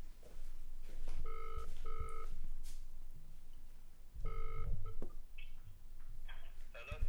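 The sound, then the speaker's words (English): A phone ringback tone heard through a loudspeaker while placing a call: a quick double ring, a pause, then another ring starting, with a tinny quality over faint background noise. “Yeah, that's ringing.”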